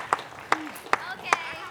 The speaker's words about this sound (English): How about one more big round of applause for all of our kids? You guys did awesome.